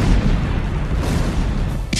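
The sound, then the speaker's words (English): A massive explosion roars with a deep, sustained rumble that fills the whole clip, loud, with a sharp crackling burst near the end and no voices: an ammunition dump at the Khe Sanh base hit by heavy incoming fire. “And all of a sudden, this huge explosion.”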